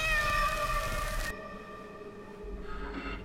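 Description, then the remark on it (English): A cat lets out one long, drawn-out meow, loud, its strained, steady tone holding for several seconds with no talking around it. “if your cat was there, I'd be able to see him through the camera, right?”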